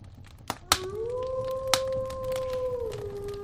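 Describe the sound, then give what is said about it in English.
A single long wolf howl rises, then holds a steady, clear tone for a few seconds before dipping at the end, with a few sharp clicks near the start and low background rumble. “Dare I say, this is the first time I've ever heard that wolf have a little bit of an English accent.”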